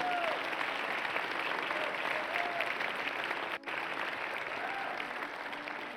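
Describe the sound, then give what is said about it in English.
A large church audience applauds steadily for those baptized that weekend, a dense wash of clapping that holds at full strength for several seconds before easing slightly, with faint cheers mixed in. “Can we give them all another round of applause?”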